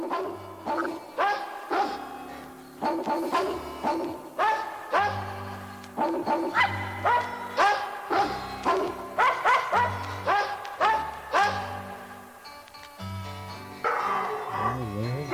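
A small Yorkie dog barks over and over in quick, sharp bursts, loud, with a steady low hum running underneath.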